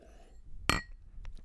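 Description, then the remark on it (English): Glasses clink together in a toast: one bright clink with a short ringing tail, followed by a couple of softer taps against a quiet background. “Fucking cheers to that, dude.”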